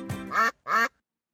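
Two loud, nasal duck quacks in quick succession, clear, the first slightly longer than the second, followed by silence.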